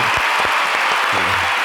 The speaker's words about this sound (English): Everybody, applause.